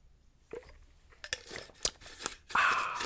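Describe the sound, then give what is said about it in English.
A plastic screw-top water bottle is handled: the screw cap clicks and grinds in short bursts as it is put on, with crinkling and rustling of the bottle building toward the end. No one speaks. “This screw top doesn't go on really well.”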